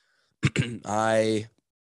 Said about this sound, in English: I apologize for clearing my throat.